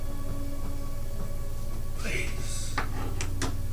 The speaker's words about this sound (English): And the door... begins to open. And what you see is that on the other side of the door, there are two humanoids manning these doors, pushing them open.